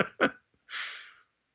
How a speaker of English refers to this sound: I'm going to sneeze, so I'm going to mute my mic for a second.